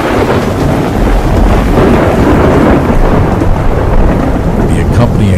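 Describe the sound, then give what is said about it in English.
A thunderstorm rumbles steadily with deep, rolling thunder over a constant wash of heavy rain, loud throughout with no voices. “At any given moment, hundreds of storms are occurring somewhere around the world. This amounts to about 16 million thunderstorms each year.”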